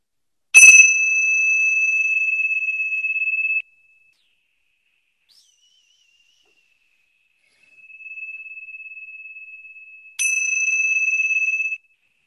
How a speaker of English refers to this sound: Okay, take a nice deep breath in and out, and in a moment I'm going to ring the bell, and then you can open your eyes and come back into the group.